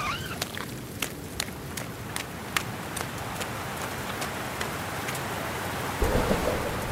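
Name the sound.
heavy rain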